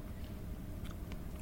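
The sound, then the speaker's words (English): Soft chewing sounds of a person eating a bite of pie just out of the oven, with small wet clicks and faint crunches, a steady mouth-full mastication with no talking. “I'm still chewing.”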